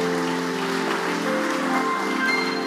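A church audience claps a clap offering to the Lord in a dense, steady wash of applause that lasts the whole stretch, with sustained keyboard-like tones humming underneath and no one speaking.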